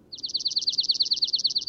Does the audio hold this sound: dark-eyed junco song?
yes